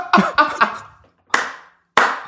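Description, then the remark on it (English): A lone man stands up and claps, three quick sharp claps followed by two slower, spaced-out ones, loud with a short ringing tail after each, and no talking. “If you heard stand up and clapping this man, that was amazing, first off.”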